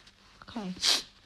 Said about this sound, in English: sorry, just a second. I need to blow my nose. I have a cold.